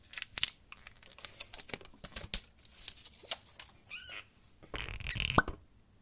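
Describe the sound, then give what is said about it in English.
A series of sharp snips and clicks from kitchen scissors cutting the foil off a bottle of white balsamic vinegar infused with lemon and cucumber, irregularly spaced, ending in a brief crinkling, tearing burst. No one speaks. “So a good pair of kitchen scissors is always nice to have around.”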